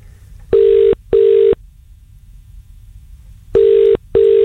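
A telephone ringback tone on an outgoing phone call that goes unanswered, loud, sounding in two double-ring bursts separated by a pause, with no one speaking.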